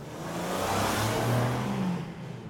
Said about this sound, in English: And the cars you can hear on track at the moment are the GB3 championship cars that are having their race, so this is actual racing you're hearing in the background.